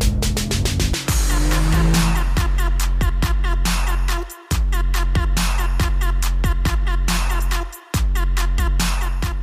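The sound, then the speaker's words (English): A Mercedes-AMG GT S sports car engine, heard from inside the car, roars loudly, revving hard through the gears, with two brief cuts in sound at the shifts and a raspy, crackling exhaust note throughout. “We are right now in the AMG GTS, and the other car will be the Mercedes-Benz C63 AMG.”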